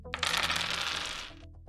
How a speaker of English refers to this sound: Some fucking dice! Roll it, roll it.